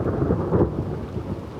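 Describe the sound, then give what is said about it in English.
A deep, continuous rumble of thunder rolls through a storm, heavy and low, with a faint hiss of rain beneath it and no voices. “Storm clouds gathered.”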